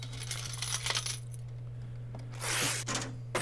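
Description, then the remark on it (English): Coins clink and jingle in scattered bursts, with a brighter cascade of metallic rattling near the end, over a steady low hum with no talking. “This is me walking down to the Sirius XM store and paying for my membership every month in a little sack of coins.”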